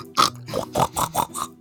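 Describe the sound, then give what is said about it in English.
A person imitates a pig, letting out six quick oinking grunts in a steady rhythm, fairly loud, with nothing else around them. “But yeah, you don't really notice that you're like, oink, oink, oink, oink, oink, you know?”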